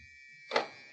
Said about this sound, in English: Press that buzzer on the wall, will you? It opens the door.